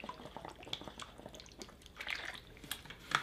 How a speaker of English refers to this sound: Oh, I just dumped water all over myself. Because I didn't want to put my lips on it because I got blunt tar on my lips, but fuck it.